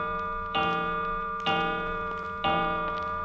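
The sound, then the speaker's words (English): A clock ticks with three loud, evenly spaced beats about a second apart, each leaving a ringing metallic resonance, with no voices. “What does the clock say?”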